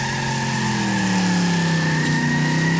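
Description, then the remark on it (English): A loud Camaro car engine revs steadily, its droning pitch climbing gradually over a few seconds with no one speaking. “We're talking about Camaros. Can a Taurus do this?”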